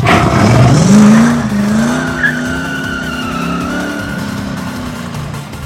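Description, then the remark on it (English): The engine of a car called the Primal Rage revs up sharply and climbs in pitch as the vehicle accelerates, then holds a loud, steady droning whine with a hint of tire squeal, continuous throughout. “Ah, oh, it's our car, the Primal Rage.”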